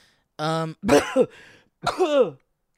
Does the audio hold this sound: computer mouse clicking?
no